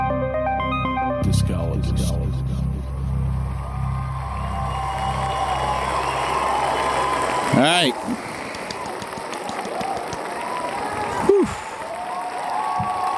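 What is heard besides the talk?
crowd cheering and applause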